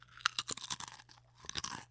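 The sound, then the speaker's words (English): Crisp, crackly crunching of a Cool Ranch Doritos tortilla chip being chewed, in two bursts of rapid, irregular bites with a short pause between them, fairly quiet and with no talking. “I smell the fake chemical Cool Ranch flavoring that they spray onto the tortilla chips at the Doritos factory.”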